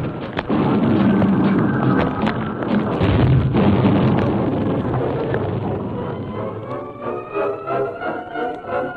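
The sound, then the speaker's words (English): A runaway train wrecks, its cars smashed to splinters: a long, loud, roaring rumble studded with sharp clattering impacts, gradually giving way to a wavering, hissing tone as the wreckage settles. No voices. “The masked man and his Indian companion had seen the runaway train from a distant hill and had ridden to the scene of the wreck at top speed.”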